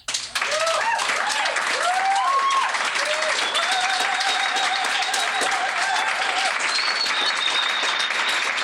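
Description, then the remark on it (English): Steady, dense applause from an audience after a poem reading fills the whole stretch, loud and sustained, with a few voices calling out and cheering over the clapping. “Let's just keep clapping.”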